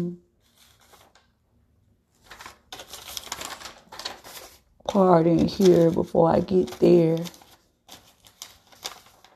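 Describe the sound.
Papers rustle and shuffle for a few seconds in short, crisp bursts, then a man's voice speaks briefly over the quieter handling noise.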